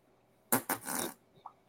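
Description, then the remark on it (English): A man farts: two quick sputtering puffs followed by a longer raspy blast lasting about half a second, then quiet. No one speaks. “just farting while he beating it good.”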